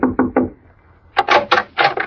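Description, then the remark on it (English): Three dull, hollow knocks on the wooden door of cabin number 4 at the Shady Glade, a short pause, then a quicker burst of about five sharper, brighter raps, fairly loud with no voices. “Well, anyway, I pulled up at the Shady Glade and knocked at the door of cabin number 4.”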